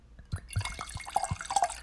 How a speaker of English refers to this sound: Okay, so here I am pouring my second glass of wine.